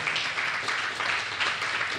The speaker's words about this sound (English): Come on, yes, you can clap for that.